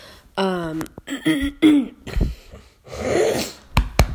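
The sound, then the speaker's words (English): A loud burst of snorting and coughing, a rapid series of harsh nasal snorts, throaty coughs and wheezy breaths with sharp clicks, no talking alongside. “See what I mean? Snorting and coughing.”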